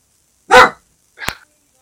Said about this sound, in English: So, you have a friend there, or are you barking? Yeah, unfortunately, sorry about that.